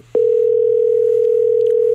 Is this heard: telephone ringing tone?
yes